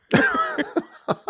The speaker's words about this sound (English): The coughing isn't great.